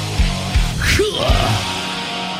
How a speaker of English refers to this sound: The greatest live shows and that cheering crowd sound.